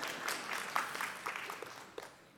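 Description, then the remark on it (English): A short burst of audience applause, a dense patter of many hands clapping at moderate volume that tapers off slightly toward the end, with no voices over it. “There you go. You could applause.”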